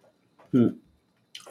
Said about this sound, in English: Gazunkai kitty, he just sneezed. And it was adorable. For those who don't know this, when cats sneeze, mm-hmm. it is so freaking cute.